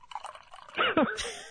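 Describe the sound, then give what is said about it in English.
Liquid pours into a mug in a short splashing burst, the trickle's pitch climbing as it fills, with a few drips and light clinks. “I'm actually going to pour it into this mug here.”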